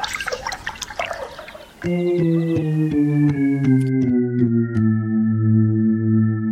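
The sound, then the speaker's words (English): Water splashes and patters for a moment as it is poured onto a plant, then settles into a steady, ringing pour with a hollow, tonal gurgle that drifts slowly in pitch, fairly loud, with no talking. “Now, care for some water? Here you go.”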